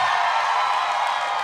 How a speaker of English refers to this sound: This is a good thing we've done. This is the part of the podcast where we just spontaneously cheer for Ruth Bader Ginsburg. I think we should do that every week.